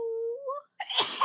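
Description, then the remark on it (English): A single sneeze from a person allergic to cats, after seeing a black cat: a drawn-out, rising voiced "ahh" intake, a brief pause, then a loud, breathy burst of noise that trails off. “Oh I'm sorry. Bless you.”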